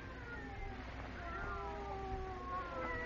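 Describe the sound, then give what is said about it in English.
Several cats meow and wail in long, drawn-out overlapping cries, rising and falling in pitch over a low steady rumble, with no talking. “They're not ordinary cats. Listen to them.”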